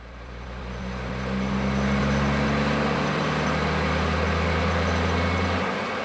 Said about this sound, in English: Recently, these seismic trucks, which generate sound waves, became the focal point of controversy when an energy contractor began work in Utah's Dome Plateau.